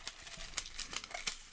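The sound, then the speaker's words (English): Soft, irregular rustling and crinkling of folded paper slips as a hand sifts through them in a bucket, with several brief crisp clicks and scrapes, fairly quiet and without any talking. “Can we pick a little thing out of the bucket?”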